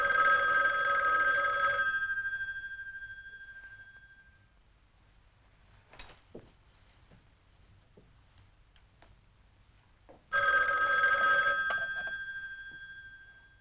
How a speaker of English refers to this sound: It's a nice patient phone, as you can tell, with a pause in between the first and the second ring.